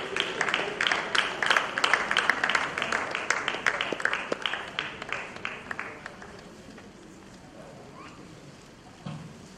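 An audience breaks into dense, steady applause, many hands clapping at once for about six seconds before it thins out and fades into a low, quiet murmur.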